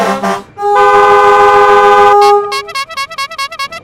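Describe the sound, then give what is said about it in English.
Loud, overlapping airplane horns from two airplanes trying to land on the same runway blare in a long sustained chord, then break into a rapid series of short honks, like a jammed street full of impatient drivers. No one speaks. “We can hear the sound of airplane horns blaring at each other like a New York traffic jam.”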